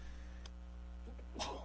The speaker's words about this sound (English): … had to sneeze. …'s sneezing again.